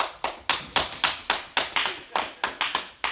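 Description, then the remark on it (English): Steady, rhythmic clapping, about four claps a second, sharp, sounding like a small group or a few people applauding together with no talking. “Come on, y'all clap for it.”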